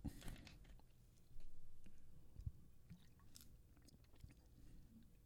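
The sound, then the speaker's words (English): Quiet mouth sounds of someone sipping a drink, with small wet clicks and a soft slurp partway through, no talking. “Let me sip to this.”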